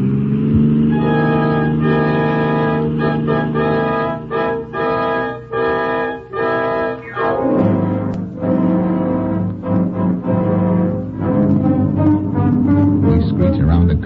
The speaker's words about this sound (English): Their car roars past.